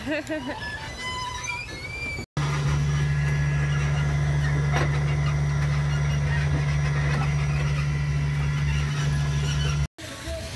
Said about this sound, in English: We actually get to ride the train up here. This is exciting, this mini golf course. How often do you get to ride a train at Mr. Golf? Never.